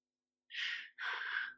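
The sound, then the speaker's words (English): A voice imitates the heavy breathing of an actor playing dead: two loud, breathy huffs in quick succession, a shorter one followed by a longer, rasping one, with no talking. “And he is breathing like this.”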